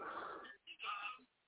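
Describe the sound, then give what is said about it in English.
A person imitates a dog barking, letting out two loud, rough vocal barks with a short pause between them. “I bark for you, God damn.”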